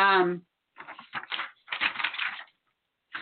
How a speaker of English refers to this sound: So sorry for the paper rattling in addition to the saber rattling.